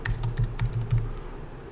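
A quick burst of typing on a computer keyboard: six or seven crisp key clicks in rapid succession, then the clatter trails off into a soft background hum.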